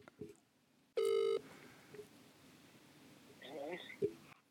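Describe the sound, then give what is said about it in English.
An outgoing call's ring tone as a show host phones a guest: one loud, steady, buzzy tone lasting under half a second, then low background hiss and faint, muffled voice-like sounds. “We're going to give him a call right now.”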